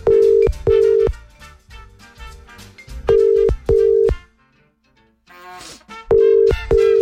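A telephone ringing tone over the line as a call is placed to a listener in Alimos, Athens, sounding in three sets of paired short beeps at a steady rhythm, fairly loud and clear, with faint background noise between the rings.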